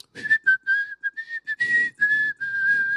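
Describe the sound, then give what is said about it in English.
A person whistles a wavering, tuneful melody by mouth, a bright steady tone broken into several short phrases with breathy pauses, fairly loud, with no talking. “And then he took some of the gold and the talent and went back and kept it in his house and pretend to go back to the master's house, pretend nothing happened, blowing his whistle.”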